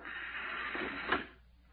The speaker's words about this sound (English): Yes, come in and shut the door